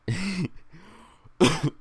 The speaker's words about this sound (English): Sorry, I've been balancing that cough for a while.